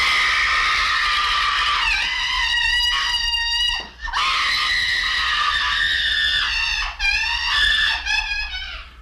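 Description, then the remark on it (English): A woman in a film screams intensely and at length, high-pitched, while flailing and running around, breaking off briefly for breaths around four and seven seconds before shrieking again, with no talking. “but she completely balls out, goes for it, and does some real intense screaming, flailing, and running around, and it's delightful.”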